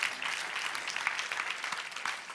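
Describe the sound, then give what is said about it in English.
An audience applauds, a dense, steady wash of many hands clapping at once that holds at an even level throughout, with no voices rising above it. “That deserves everybody to clap.”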